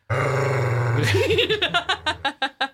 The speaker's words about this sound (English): She's one of the most gripiest vocal dogs. She is a griper.